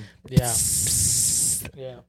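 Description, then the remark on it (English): Someone makes a sustained hissing noise with their mouth, imitating pepper spray, lasting over a second and fairly loud, with brief voiced sounds before and after it. “I feel like she'll take out like a knife. No, like pepper spray.”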